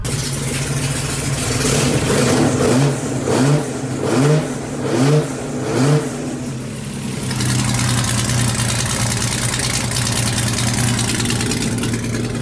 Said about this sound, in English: The time machine is running like a dream. Listen to it roar when you press the accelerator.